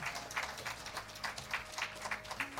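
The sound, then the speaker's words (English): An audience claps along in praise to God in a steady rhythm, roughly three crisp claps per second, fairly soft overall, with a faint low hum and sustained tone underneath and no one talking. “Come on, let's clap our hands and give God a praise.”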